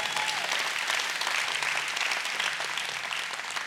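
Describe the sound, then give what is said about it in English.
An audience claps steadily, with dense, crackling applause at a fairly even loudness for several seconds before it begins to thin slightly at the end. “You can clap for that.”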